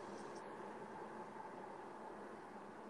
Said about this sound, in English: I mean, it sounds like you're on under a waterfall. No, it's just another train. Oh, yeah, trains are going by.